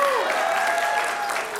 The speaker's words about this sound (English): We need your extra applause because, man, it's been a lot of work.